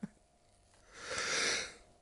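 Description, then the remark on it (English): A single stifled sneeze: a soft, hissy burst of breath that swells and fades over about a second, fairly quiet, with no talking around it. “I'm enjoying the challenge of not editing out sneezes and see if it works.”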